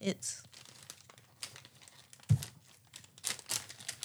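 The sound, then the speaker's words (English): Crisp crinkling and rustling of a plastic snack wrapper being handled and torn open, with sharp bursts of crackle and a low thump, in irregular bursts over a few seconds. “Try to open it.”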